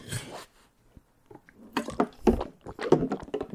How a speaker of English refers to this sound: Pass me the water bottle, please. I'm just going to put the water bottle, like that's the lid clanging. And you hear that? And this is when you drink from it.